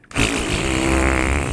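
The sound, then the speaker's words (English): A loud, drawn-out fart noise kicks in almost immediately and holds steady as one continuous, raspy buzz, unbroken, with no talking. “A three-hour fart noise.”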